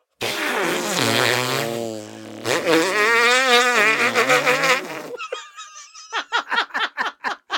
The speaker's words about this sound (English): That was a hearty fart.